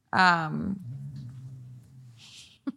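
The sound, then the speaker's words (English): A dog, Harlow, lets out a long, low groan, starting with a brief higher whine-like rise, then settling into a drawn-out rumbling moan for about two seconds. “Every time I try to talk, she just like groans.”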